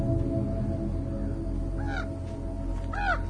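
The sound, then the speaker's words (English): Two harsh crow caws ring out about a second apart as crows land, over a steady low outdoor hum with no one speaking. “Crows are landing.”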